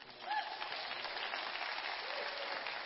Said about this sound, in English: Amen. Let's give one more round of applause for these young men and women. It's not easy to get up here and share,